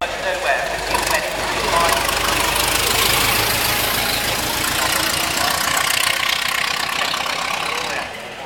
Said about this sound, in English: One of those machines would have been a 1903 Panhard, and you're standing there watching it come close to you, make a bend in the road, and accelerate